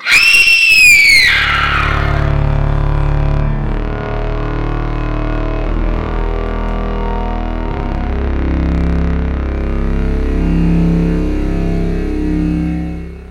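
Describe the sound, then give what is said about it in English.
A shrill, wavering scream rises and falls in the opening second, then gives way to a loud, steady droning hum with distorted, buzzy tones that continue to the end. “And we urge you calmly and sincerely that should you at any time tonight during the excitement of these imaginative radio dramas feel the need to scream during our performance, do so.”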